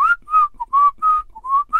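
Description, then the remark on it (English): A person whistles a short, bouncy tune into a microphone, with a run of quick, bright notes separated by tiny gaps, loud and clear with no talking, until the microphone cuts it off. “No, I whistled in my mic, but it might have just cut off.”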